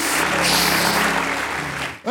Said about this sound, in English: Oh, I wish you'd give God a hand clap of praise. I sure would.